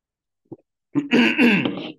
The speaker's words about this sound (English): I'm sure this is lovely for you, the listening audience, to hear me clearing my throat all the time. But we're going to power through it.